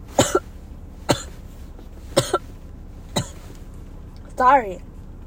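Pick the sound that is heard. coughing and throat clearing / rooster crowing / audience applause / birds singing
coughing and throat clearing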